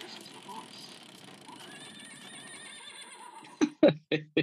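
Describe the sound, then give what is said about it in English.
A voice imitates a horse's neigh: a long, wavering high whinny rising out of quiet background chatter, ending in four loud, sharp, breathy bursts. “I've never heard the horse before.”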